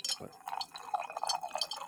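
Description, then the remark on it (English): Whiskey pours steadily into a glass for about two seconds for a drink called a Croaking Mule, a splashy, gurgling stream with a faint clink of glass at the start and a bright, hissy texture throughout. “Wow, do you got whiskey for that drink?”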